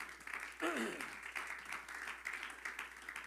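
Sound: audience hand clap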